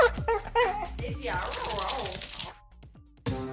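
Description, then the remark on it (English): Daisy Buchanine, the office dog at 100 Bogart, whimpers and gives short, high-pitched yelps in quick bursts, followed by a noisier stretch of excited vocalizing, a brief lull, then a final burst of sound. “plus our chief of morale, Daisy Buchanine, Cat's dog”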